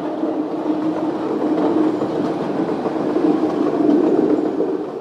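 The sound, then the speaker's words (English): A subway train runs along the rails toward UIC Halsted, the next stop, with a steady, loud rumbling roar and faint rattling, continuous and unbroken for the whole stretch, with no voices. “Doors open on the left at UIC Halsted.”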